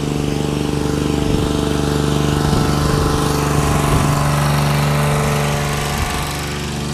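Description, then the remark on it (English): A rusty old Victor lawnmower, with a brick on top holding its grass catcher on, runs steadily and loud as it is passed, its droning hum constant for several seconds with slight pitch wobbles before easing a little at the end. “going past the Victor lawnmower”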